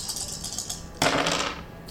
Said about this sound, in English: I'm going to roll dice equal to my knowledge, which is 5. And I have to roll 6 plus, and if I do, I draw 2 items.